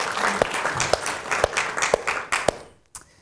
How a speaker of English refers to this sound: You can give yourselves a big round of applause for that. That's fantastic, isn't it?